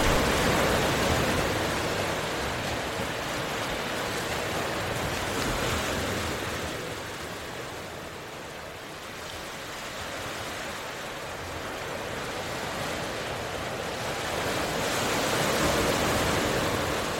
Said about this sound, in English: Look at the vast blue ocean. You take comfort in how the waves always keep going.